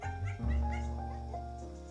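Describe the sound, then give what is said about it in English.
A dog whines and yips, a high, wavering whimper that rises and falls over a couple of seconds, with a steady low hum underneath. “He will not be quiet, because my grandmother invited our dog to come stay with hers to see if she could allow him to sleep in the same kennel as her.”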